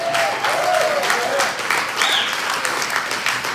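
A crowd claps loudly and steadily throughout, a dense wash of applause with a few faint whoops or whistles rising over it.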